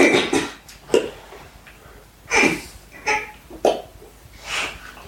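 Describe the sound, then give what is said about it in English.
A voice imitates a high-pitched fart from a man in a toilet cubicle, spluttering out a series of short, breathy raspberry-like bursts with uneven pauses, fairly loud, with no talking in between. “Sure enough, it was a high pitched fart.”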